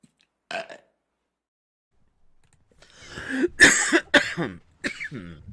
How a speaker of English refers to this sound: Oh, that was nice. The burping was nice. I like the burping in this. More burps. The burping, pardon me, I'm having a coughing fit.